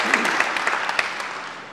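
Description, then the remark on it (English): Audience applause: a steady wash of many hands clapping at once, dense and bright, with scattered sharper claps poking out, holding fairly even before easing slightly toward the end. “Let's give a round of applause to those who spoke in different languages from Ag.”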